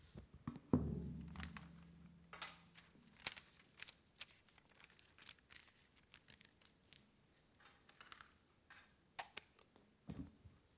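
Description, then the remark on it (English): Crackling and rustling as an A4 sheet of paper is crumpled and pushed into a tin, with irregular crinkles, a dull thunk near the start, and occasional metallic knocks. No one speaks. “Okay, it's in the tin. Can you tell me what size piece of paper is in that tin?”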